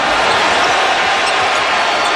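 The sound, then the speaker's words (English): A basketball arena crowd roars and cheers for LeBron James in a steady, dense wash of noise that stays loud and unbroken for a couple of seconds, with no distinct voices standing out. “This is the LeBron cheering.”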